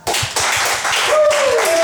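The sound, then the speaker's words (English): A crowd applauds for an entry called Musk.exe with dense, steady clapping that fills the whole clip. Partway through, a thin whistle slides down in pitch. “Oh, that's great, you still have energy to clap.”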